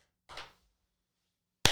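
Two sharp hand claps about a second and a half apart, the first with a brief ringing tail, the second crisp and abrupt, with silence between them and no talking.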